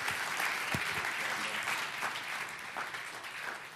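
A church audience at a morning service claps steadily to welcome a guest speaker, a dense wash of many hands at an even, fairly loud level, with a few faint voices mixed in underneath.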